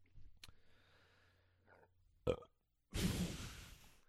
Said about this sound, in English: Well, then maybe you should just start with a burp or whatever.